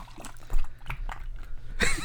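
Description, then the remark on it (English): Beer is poured into a cup, with a few soft splashy glugs building into a louder, hissing rush of fizzy pouring at the end. No one speaks. “I want to pour it.”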